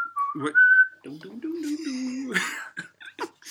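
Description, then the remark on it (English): A person whistles a short, clear melodic phrase of a theme tune lasting about a second, followed by indistinct voiced murmuring and a few brief vocal noises. “Were you whistling the theme tune for...”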